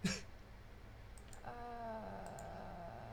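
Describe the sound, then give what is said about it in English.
A few faint computer mouse clicks, quick and in pairs, as someone clicks around on maps, with a soft thump at the start and a steady low hum running through the second half. No one speaks. “are you clicking around at maps?”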